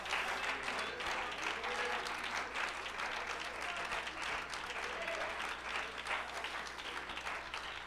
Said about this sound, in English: Clap your hands and shout unto God with a voice of triumph.